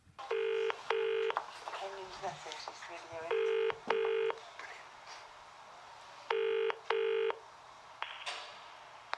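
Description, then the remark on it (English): A telephone calling a customer's number rings in three pairs of short buzzing bursts, evenly spaced, fairly loud and clear over faint background murmuring, before an answering machine picks up. “This is obviously somebody rang this customer, and we must have rang this customer about 20 times.”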